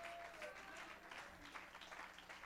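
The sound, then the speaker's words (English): A standing church audience claps their hands in praise to the Lord in a steady, dense wash of applause, with faint voices and a few cheers mixed in. “Let's stand across the building and clap our hands unto the Lord.”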